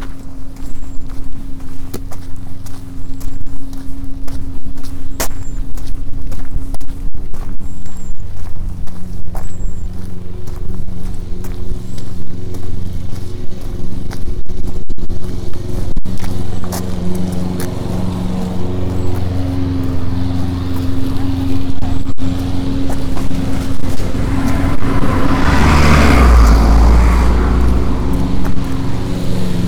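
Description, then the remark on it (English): Steady footsteps on hard ground move through a car park with a constant low engine hum, and a vehicle grows louder and rumbles near the end. “My lift awaits in the car park.”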